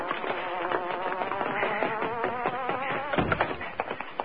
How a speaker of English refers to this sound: That's the Hornet's car, I'll tell you.